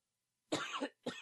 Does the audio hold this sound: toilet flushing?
no